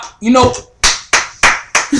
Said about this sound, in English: I really gotta clap it up for this nigga. I'm really happy for this nigga.